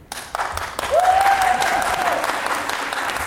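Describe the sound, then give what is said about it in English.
A crowd breaks into steady applause, dense clapping throughout, with a single whistle rising over it for about a second before the clapping carries on. “Let's hold our applause till the end”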